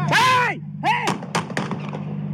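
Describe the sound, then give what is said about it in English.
Rapid police gunfire by the meat department of a store in Portland, aimed at a man identified as a shooter: three or four sharp, loud shots crack in quick succession right after a man's raised, shouting voice, with a steady low hum underneath. “A bystander identified a man in a red hoodie as the shooter, and a hail of gunfire erupted.”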